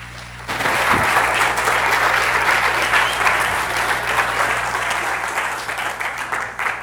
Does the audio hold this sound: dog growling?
no